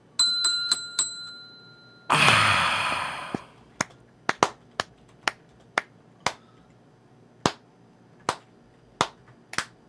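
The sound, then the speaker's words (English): A slow clap of about a dozen single, sharp hand claps spaced roughly half a second apart, preceded by a few bright bell-like chimes and a brief noisy burst; no one speaks. “Had to give him the build up, slow clap.”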